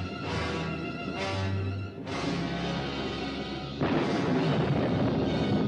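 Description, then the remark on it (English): Soft, rolling thunder in a zombie film soundtrack rumbles low and steady beneath a quiet music score, swelling slightly in the last couple of seconds; no one speaks. “Thunder, little thunder.”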